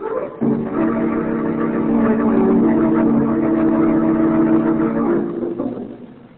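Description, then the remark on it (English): A car engine runs steadily, a loud, continuous mid-pitched hum that starts abruptly, holds for about five seconds, then fades down. No one speaks over it. “Come on, Huggins, make for the car.”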